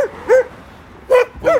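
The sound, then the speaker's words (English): A dog barks in short, sharp yips, four quick barks spaced unevenly over a moment, clear with no one talking. “But every day he barks at us.”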